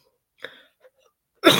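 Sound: cough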